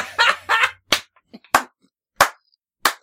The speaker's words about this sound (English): Slow clap. Kind of hurt my ear.